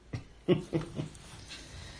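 A dog barks four times in quick succession, short sharp yips that fade slightly with each one, with no talking.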